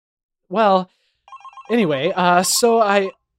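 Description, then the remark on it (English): A telephone ringing, apparently imitated by a voice: a short sung burst, a few brief electronic-sounding tones, then several loud, warbling ring-like calls. “Oh God, the phone.”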